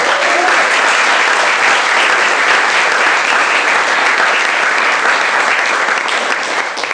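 A Story Slam audience claps steadily throughout, a loud, dense wash of applause with no individual claps standing out and no voices on top.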